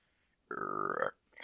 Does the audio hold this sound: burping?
yes